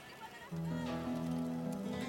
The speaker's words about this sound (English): Oh, those are the fucking goats, bro. Oh, the goddamn cabras. Always with the cabras. Always with the fucking goats, you know?